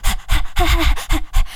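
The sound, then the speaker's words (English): A person imitates panting with about six rapid, breathy huffs in a steady rhythm, fairly loud, with a slight voiced edge on some breaths. “Panting just sounds really it doesn't work.”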